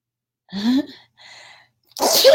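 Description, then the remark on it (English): A loud sneeze builds from a rising breathy intake into a sharp burst, followed by a pause and a second forceful, noisy sneeze at the end. “So the first thing is, I got to sneeze.”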